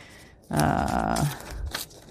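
Paper being torn by hand on all sides to decorate the back of a journal: a loud, rasping rip lasting under a second, followed by a few shorter, softer tearing sounds, with no talking.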